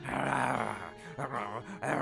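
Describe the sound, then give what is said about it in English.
A person growls in imitation of the lion in the story of Pyramus and Thisbe, producing a rough, continuous snarl, with two brief pauses before the growl resumes and ends. “A lion! Thisbe drops her cloak as she runs away, and the lion picks it up and chews on it.”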